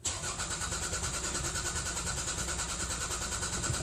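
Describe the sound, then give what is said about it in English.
A car engine cranks over and over without catching, a steady, rapid grinding churn that keeps going for several seconds, fairly loud, with no voices. “Are you having some trouble starting your engine?”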